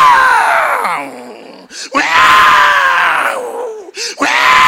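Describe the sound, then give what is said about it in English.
A person's voice imitates an elephant trumpeting: three loud, brassy, strained blasts, each sustained then bending downward in pitch, separated by short gasping breaks. “Have you heard elephants trumpeting through?”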